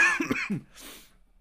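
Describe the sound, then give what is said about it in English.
A single harsh cough bursts out, followed by a breathy, raspy exhale that trails off into quiet. No talking accompanies it. “This fucking cough.”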